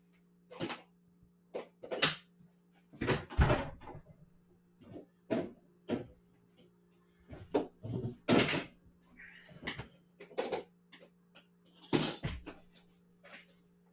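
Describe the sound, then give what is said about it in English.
A fridge door is opened and shut amid a run of clunks, rattles and thuds, with a steady low electrical hum running underneath throughout and no talking. “There's a fridge over here that's hopefully.”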